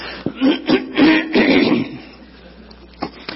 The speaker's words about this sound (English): Help me clear my throat. That's good. That's when I do, I hear you do it. That feels good.